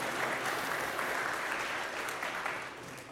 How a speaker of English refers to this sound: Thank you. Your expectations are really low. I was not expecting applause.